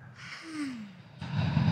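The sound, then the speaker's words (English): A slow, breathy exhale through the mouth during a belly-breathing exercise, a soft airy whoosh lasting about a second, followed by a brief burst of louder rustling noise. No one speaks. “And now slowly breathe out through your mouth.”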